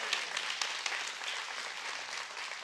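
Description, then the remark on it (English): A church audience gives God a hand clap, many hands clapping at once in a dense, continuous wash of sharp claps that holds a constant level throughout, with no voices standing out. “Come on, give God a big hand clap if you're with me, church.”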